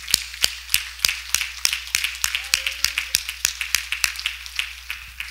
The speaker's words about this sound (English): Clap your hands to the Lord one more time.